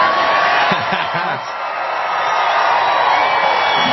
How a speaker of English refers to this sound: Wow, that's a big crowd back there.